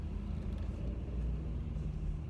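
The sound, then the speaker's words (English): A tow truck passes on the right side in bumper-to-bumper traffic, its deep engine drone steady and low. It sounds moderately loud against road noise, with no one talking. “Tow truck.”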